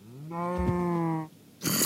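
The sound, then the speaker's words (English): A single cow moo, steady and fairly loud, holds for about a second. After a brief pause, a harsh burst of rushing noise follows. “That's a cow, that's an ocelot.”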